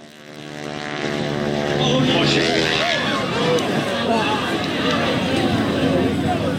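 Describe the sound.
The stunt plane of wing walker Jane Wicker: its propeller drone gives way to a sudden, sustained roar as it drops out of the sky, slams into the ground and explodes in a fireball, with crowd voices crying out beneath the loud rumbling noise.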